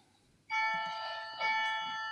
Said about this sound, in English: Is that the cuckoo clock? It is.